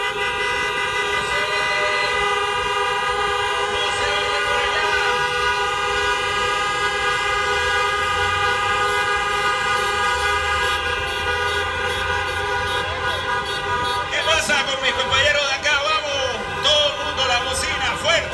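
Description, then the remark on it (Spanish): Many car horns in a caravan blare together in a loud, continuous overlapping chorus, held nearly steady for the whole stretch, with a few extra honks and faint shouting joining near the end. “Y que suenen las bocinas.”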